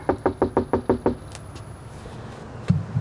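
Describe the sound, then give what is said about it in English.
A quick, evenly spaced run of about seven firm knocks on the front door of a small house, as canvassers go door knocking for voter outreach in a neighborhood with backyard chickens, followed by a quiet pause and one soft thud near the end. “I shadowed some door knocking with the New Georgia Project, and we were in this neighborhood of small houses where backyard chickens were roaming freely.”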